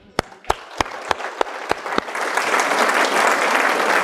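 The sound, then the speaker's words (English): Audience applause that begins with about seven slow, evenly spaced claps, then swells into a dense, steady round of clapping from a crowd that continues to the end. “So for the rest of the day, I'll be holding the applause sign out.”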